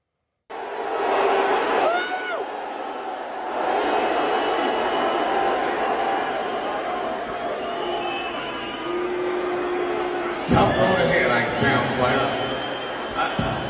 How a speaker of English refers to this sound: But you know, there's one thing. All those people are booing, and I'm just pointing out the obvious.